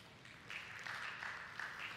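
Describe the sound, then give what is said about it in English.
A church audience claps together during a sermon in a steady wash of applause that swells slightly after the first half second and holds for about two seconds, soft overall with no voices over it. “Yeah, that's a good time to clap.”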